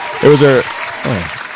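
Steady audience applause for show guest Anthony Mlekuz fills the short clip, a dense wash of clapping with two brief, higher-pitched cheers or whoops rising over it, the first louder than the second.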